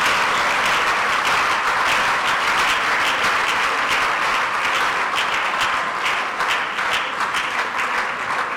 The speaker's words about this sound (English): Please continue to appreciate her as she takes her seat. Continue to keep on clapping until she sits down.